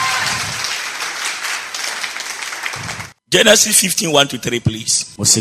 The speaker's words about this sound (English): Oh, give the Lord a better clap offering.